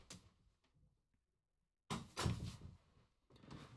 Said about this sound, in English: Here, hold on a second. I have to close my door. I have people coming home. Just a sec.